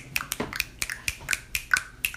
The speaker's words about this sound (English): Snap your fingers.